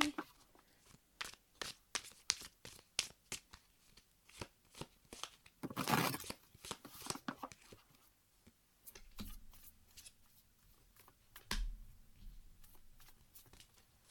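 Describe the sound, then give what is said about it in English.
Tarot cards being shuffled: a run of crisp, rapid flicks builds to a dense riffle burst, followed by a few sparser slaps and soft handling as cards are drawn, the Tower and the Nine of Coins. “I got the Tower and the Nine of Coins.”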